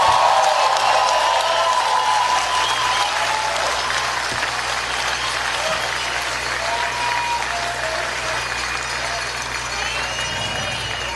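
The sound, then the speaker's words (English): A large crowd applauds steadily for several seconds, a dense, sustained wash of clapping that stays loud throughout and tapers only slightly near the end, with faint voices mixed in. “Give him a hand. Give him a round of applause.”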